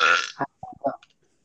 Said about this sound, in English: Can you stop burping?